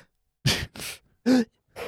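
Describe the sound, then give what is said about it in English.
A series of four quick, sharp breaths drawn in, spaced with short pauses, one with a slight voiced catch like a gasp. “Although sometimes I've taken people just breathing in from other bits.”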